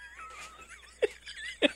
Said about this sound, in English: Get some dog ball licking in the background. That's really what sets apart all the Explosive Magico shows. Is you get the sound of dogs pleasuring themselves in the most not even intense that, way. Just slurping away.